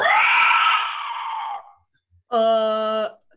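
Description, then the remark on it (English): A loud, ear-piercing griffin shriek rings out through the sky, a long raspy cry that fades, then after a brief pause a second, shorter, shrill and tonal scream, with no talking. “Swooping up from below, you hear a haunting, ear-piercing shriek ring out through the sky.”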